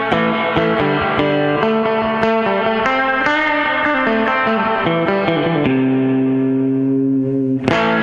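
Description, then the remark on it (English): An electric guitar plays with heavy distortion, chords and notes ringing out in a steady rhythm before a long sustained chord, ending with a sharp strum. Loud, with no voices. “Let's hear, here's some guitar right here.”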